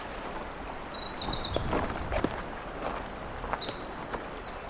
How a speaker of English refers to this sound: Seems more like a cicada, though. Up a tree. And it's non-stop.